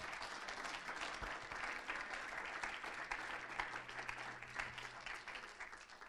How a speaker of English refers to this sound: If you believe that this morning, clap your hands today.